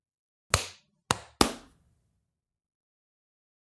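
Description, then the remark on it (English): Four sharp, loud hand claps, made to sync a recording, each with a short ringing tail, come in an uneven rhythm: a first clap, two close together, then a lone final one after a pause. No one speaks. “Let's clap at 40 seconds.”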